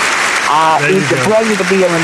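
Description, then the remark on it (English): An applause sound effect, a steady wash of applause that rolls on for about two seconds, with voices calling out over it. “We're going to give you the G Podcast applause.”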